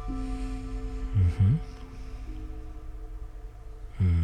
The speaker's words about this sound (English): Oh, this one's always a bit of a tricky one. A combination washer dryer.